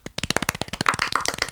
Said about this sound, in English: Tiny round of applause.